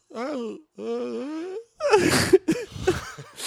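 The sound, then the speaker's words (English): A man's drawn-out, wavering yawn slides into breathy, sobbing laughter with sharp gasps and squeaky bursts, fairly loud, lasting a few seconds with no words spoken. “He's doing a yawn, cry laugh.”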